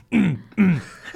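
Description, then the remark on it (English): Two quick throat clearings in a row by a man, each a short voiced rasp that drops in pitch, with a brief pause between them and no talking. “He's your dad, like clearing his throat a lot.”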